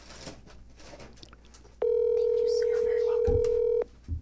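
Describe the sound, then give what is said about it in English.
A telephone line rings with one long, steady electronic tone lasting about two seconds, loud, after a stretch of faint background murmur. “The phone's ringing.”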